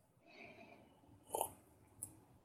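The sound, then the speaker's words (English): A quiet sip of water: a short wet slurp followed a moment later by a soft mouth click, over a faint hush with no talking. “Okay, take a sip.”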